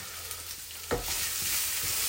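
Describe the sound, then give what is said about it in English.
Steady, crackling sizzle of asparagus frying in olive oil in a non-stick frying pan, continuous, with a faint scrape or stir partway through as it is turned with a wooden spatula, and no talking. “And you can hear it sizzling away here.”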